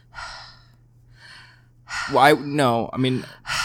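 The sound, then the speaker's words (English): A person mimics the heavy breathing of a caller on the phone: two slow, airy breaths, then a louder run of voiced, groaning pants that ends in a sharp inhale. “He's a heavy breather. Like he's probably like somebody who calls on the phone and says.”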